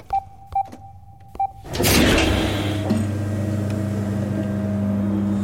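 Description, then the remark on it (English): Four short electronic beeps, then a sudden loud whoosh as a large metal door slides open, settling into a steady low mechanical rumble and hum that continues to the end. “As the door slid open, lights illuminated a large figure.”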